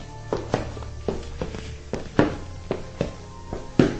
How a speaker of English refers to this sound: She hears footsteps. They get closer and closer. She sinks back into the shadows and hears them continue on.